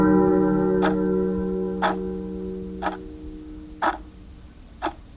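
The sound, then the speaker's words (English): A deep, hollow clock hour bell strikes the hour, its tone hanging and slowly fading over the first few seconds while a clock ticks steadily, five sharp ticks about a second apart. “He spoke before the hour bell sounded, which it now did, with a deep, dull, hollow, melancholy”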